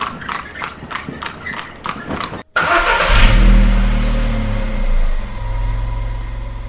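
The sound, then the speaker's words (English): Steady clip-clop of horse hooves cuts off abruptly, then a motor car engine roars to life, revving loudly with a deep rumble that gradually settles into a steady idle. “The car changed everything, and what's better, it doesn't poop either.”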